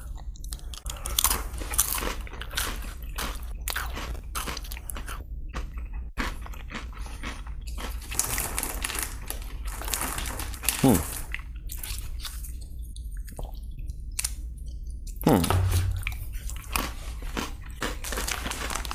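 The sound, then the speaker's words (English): Repeated crisp crunches of pita chips being bitten and chewed, mixed with soft, wet squishing from a thick dip scooped with them, continuing steadily without any talking. “Ooh, it's thicker than I expected in the scoop.”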